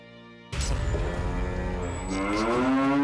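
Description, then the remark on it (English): A cow lets out one long, loud, low moo that starts abruptly and holds for a few seconds, its pitch bending upward toward the end. No one speaks. “The cow's eating the bottom of the plant!”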